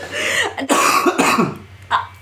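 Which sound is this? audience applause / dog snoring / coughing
coughing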